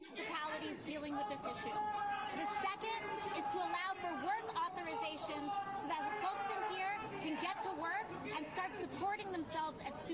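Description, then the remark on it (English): An audience of many people screaming and shouting to close the border over AOC speaking, a dense, continuous roar of overlapping raised voices that stays loud and steady for the whole stretch. “So for those that can't hear over AOC's bullshit, there's a whole audience of people screaming to close the border.”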